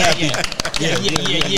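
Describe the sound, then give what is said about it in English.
A crowd applauds a guest's wife with dense, steady clapping and a few sharper claps standing out, while voices cheer and call out over the noise throughout. “Listen, I mean, let's give his wife a round of applause.”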